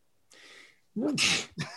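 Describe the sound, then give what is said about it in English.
A sharp intake of breath builds into one loud sneeze with a hissy burst, followed by a brief voiced sound right after. “See, even his sneezes know that.”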